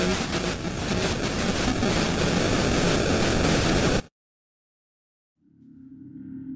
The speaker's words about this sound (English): An unintelligible section continues for several minutes as the camera recorded nothing but darkening static.